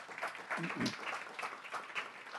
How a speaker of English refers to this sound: So all you hardworking moms deserve applause. So. Entonces, todas sus mamás muy trabajadoras ya un aplauso.